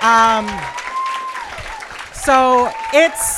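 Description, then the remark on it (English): An audience claps steadily in a dense, noisy patter, with loud voices whooping and cheering over it in rising and falling cries. “So it's stop clapping.”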